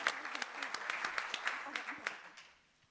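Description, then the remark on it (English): An audience applauds a discussion panel, with a dense, crackling patter of many hands clapping at a moderate level, then thinning and fading out over the last second. “Give him another hand, and I'm going to hand it over to our very capable and brilliant deputy mayor.”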